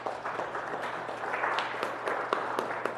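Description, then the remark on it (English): A group of people applauding themselves for raising $630 toward sending kids to Camp Oneida, a steady wash of many hands clapping at moderate loudness, with a few sharper individual claps popping out near the end. “And so let's give ourselves a round of applause there.”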